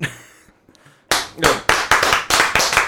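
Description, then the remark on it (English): After a brief near-silence, a short round of applause begins: a few hands clapping in a steady, brisk rhythm, fairly loud, with no talking over it. “I think we should have a round of applause in there.”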